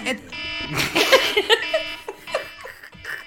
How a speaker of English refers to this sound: Sorry, guys. There's my alarm again. Something must be going on.